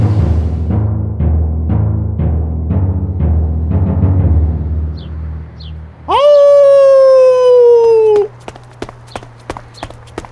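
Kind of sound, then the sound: animal, howling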